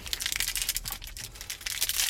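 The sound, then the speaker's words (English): An HEB recovery bar wrapper is torn open and crinkled, producing a steady run of bright, crackly plastic rustling with sharp little bursts of tearing and no voices. “Oh, and I also have a recovery bar right here. I have a choice. I have a Clif bar or an HEB bar.”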